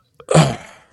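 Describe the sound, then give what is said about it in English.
A single short, throaty burp, loud, with a rough low rumble that fades quickly. No one talks over it. “Was that a burp? Yeah, it was.”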